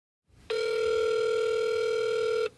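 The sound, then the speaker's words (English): A single steady ringback tone on an outgoing phone call to the offices of Jack Puppies Incorporated, an electronic buzz that holds for about two seconds and then cuts off, with no voices. “I'd call Jack's offices, JoLynn, her family, and close friends who were also accused in the lawsuits.”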